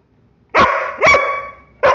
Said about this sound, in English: We have a barking dog in the background.